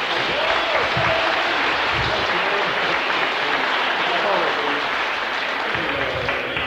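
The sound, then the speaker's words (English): An audience claps steadily for about seven seconds, a dense, even wash of applause that holds its loudness throughout, with a few voices calling out faintly underneath. “Give him a clap.”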